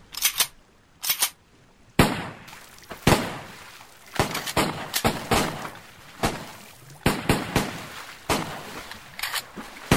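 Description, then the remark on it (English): Repeated gunshots fired at sharks in the water around a sinking boat ring out in irregular bursts, sharp loud cracks fired in quick succession with short pauses between, some shots overlapping, over a faint noisy background. “We'll need to kill as many of the sharks as possible, although that will draw yet more of them with the blood in the water, so we'll need to make this quick.”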